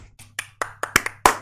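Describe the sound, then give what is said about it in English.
A handful of sharp hand claps, about eight in quick, slightly uneven succession, fairly loud, with no one speaking over them. “Can I get some applause, please?”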